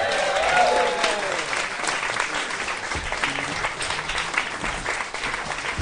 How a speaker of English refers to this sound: Ladies and gentlemen, welcome to the St James Theatre International Arena. It's time to start the show, so please put your hands together. Whoop and cheer, welcome to the stage, the man who puts the party into politics. It's Mr Matt Ford!